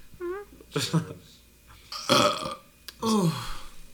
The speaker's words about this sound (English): That was, like, wet. Did you hear that? That was, like, a wet burp. It was, like, ugh.